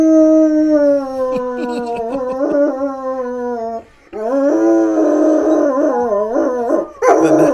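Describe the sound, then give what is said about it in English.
A dog howls loudly at a dog toy in long, wavering tones, pausing briefly before launching into another drawn-out howl with rising and falling pitch. “The knob who makes himself howl at the dog toy.”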